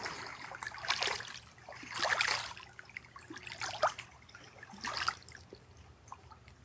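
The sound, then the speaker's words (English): Small lake waves lap and splash against rock on the shore of Kitchigami, the big lake, in uneven surges, each wash breaking with a soft hiss, over a low steady rumble of open water. “So much wisdom held in the sounds of the waves.”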